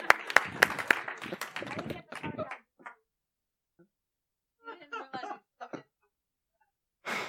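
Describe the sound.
A short burst of audience applause, many hands clapping at once for about two seconds, then fading into scattered quieter voices and pauses.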